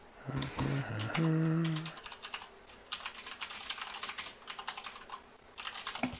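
Quick, uneven bursts of typing on a computer keyboard, clear and clattering through the whole stretch; a short voiced hum or murmur rises over the keys near the start.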